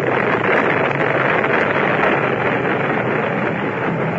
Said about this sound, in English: I named it the Adventure 2, set sail immediately. And true to my luck, a storm came up. And what do you think happened? That boat couldn't take it. It broke apart. The mast fell on my head.